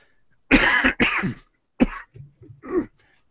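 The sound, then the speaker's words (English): Two loud, harsh coughs in quick succession from a speaker with a croaky voice, then a shorter cough and some low throat-clearing rumbles, ending with one more brief cough, with no talking. “As you can hear, my voice here is quite croaky, and I keep coughing from time to time”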